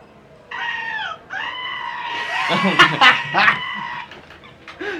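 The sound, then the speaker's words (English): A shrill, wavering goat scream from a phone buzzer app repeats in long, strained bleats, loud, rising into harsh cracked peaks before trailing off, with a tinny, phone-speaker quality; it lasts as long as a finger is held on the goat's face on screen. “It's essentially a goat's face on a phone, and it's screaming.”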